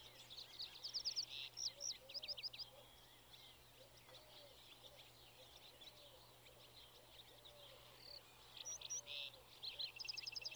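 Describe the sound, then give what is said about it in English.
Bright, rapid trilling birdsong comes in bursts at the start and end, while soft, low cooing repeats steadily underneath against a faint, even hum of background noise. “You hear the songs of larks and the cooing of wood pigeons.”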